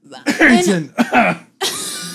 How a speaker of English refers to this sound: Oh, sorry. I had a cough. That was a really bad one. That was weird. It almost sounded like I said a word.